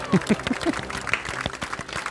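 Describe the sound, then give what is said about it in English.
A soft, polite golf clap greeting the announcement that the best sound award for 1986 goes to World Games by Epic: a small scattering of light hand claps in an uneven rhythm, fairly quiet, with a brief low murmur of voice at the start. “Golf clap.”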